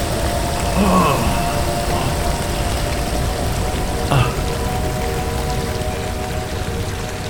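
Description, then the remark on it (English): Heavy rain pours down steadily in a dense, continuous hiss and patter, loud throughout, with a couple of brief muffled sounds buried in the downpour. “As rain pounded down on him, Stephen's eyelids slowly fluttered open.”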